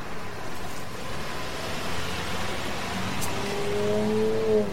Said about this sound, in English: There's nothing beyond that wooden fence except water. Slow down. Stop. I tell you, let me out of this car. Hey, you're going to smash right through the fence.